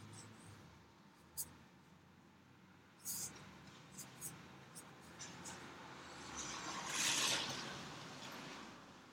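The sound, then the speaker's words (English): A two-door car approaches along a street in California and passes, its tire and engine noise swelling to a peak before easing off, over a low outdoor rumble with a few faint clicks. “Your car. I don't think it's coming down our street. Oh, yeah, it is. There it is.”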